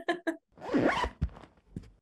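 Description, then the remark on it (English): Two short voiced chirps come first, then a raspy zip drawn across for about half a second, followed by a few quick scratchy tugs, a homemade sound effect of a handbag's zipper being pulled. “I'll do it like a bag with a zip.”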